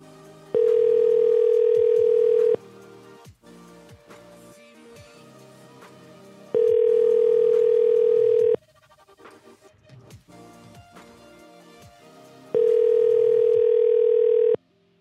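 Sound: telephone dial tone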